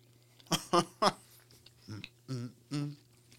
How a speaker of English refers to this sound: So for those of you listening to the audio, hey, we're just going to, you're going to hear us chewing. You hear that crisp, y'all? I could eat 100 of those right there. Easily.